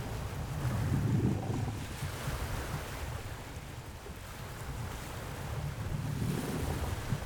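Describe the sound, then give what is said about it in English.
Ocean waves surge and wash in on an overcast, windy day, with broad rumbling swells around the start and end, a steady roar of surf blended with gusty wind noise, fairly loud, with no voices; recorded above water with two widely spaced omnidirectional microphones. “There's an above water layer, so to speak, which is two widely spaced omnidirectional microphones with the waves coming in.”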